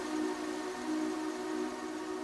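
A train approaches with a long, steady low horn-like tone and faint overtones, holding at an even level throughout, with a soft rumbling hiss beneath and no voices.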